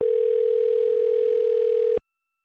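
A phone line rings out on an outgoing call: one steady, mid-pitched electronic tone holds for about two seconds, then cuts off into silence. No one speaks.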